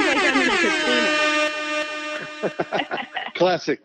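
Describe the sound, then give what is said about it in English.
A loud, sustained air horn blast played from a soundboard blares steadily for about two seconds with a rich, brassy tone, then cuts off as someone starts talking. “Classic air horn.”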